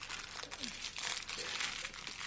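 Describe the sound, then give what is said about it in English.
Crinkly plastic packaging of a sterile face mask with a neck piece is torn and pulled open, a steady rustling, crackling noise with brief crunchy bursts that continues through the whole moment, fairly quiet, with a faint voice murmuring underneath. “So we have this mask with it has a sort of neck piece as well. Again, it comes all sterile, so you can open this.”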